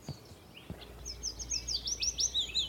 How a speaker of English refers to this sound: A willow warbler. Here he is, just on the end of this branch here. Oh, yeah. You see his throat really going for it when he sings that cascading song.